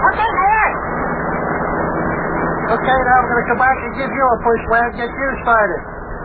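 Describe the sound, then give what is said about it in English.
The small motor of a racing car starts and runs steadily, its whine rising and falling in quick revving sweeps, with a busy, rough drone underneath and a voice-like murmur mixed in. “I told you this here motor wouldn't. Whoops. Well, what do you know? She started.”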